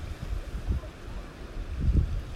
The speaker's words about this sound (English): And I don't know if you can hear the ocean or not, but I want you to turn the volume up on the sound of the ocean.